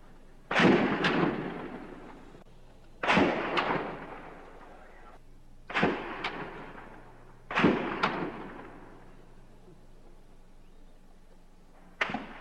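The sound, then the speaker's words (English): Gunfire in a 90-minute gun battle, with shots fired from a tower on a hot day past 90 degrees: sharp, loud shots in quick pairs, each burst a couple of seconds apart and trailing off in a long rumbling decay, with one more shot at the end. No one speaks. “Sirens screamed for the 90 minutes that the gun battle was in progress.”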